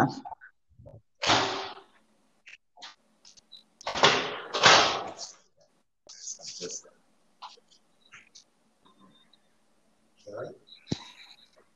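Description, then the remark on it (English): A front door is opened, giving a few scraping, rattling bursts with brief pauses, followed by softer handling clicks and shuffles. “I had to open my door.”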